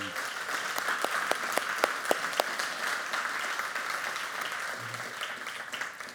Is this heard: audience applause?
yes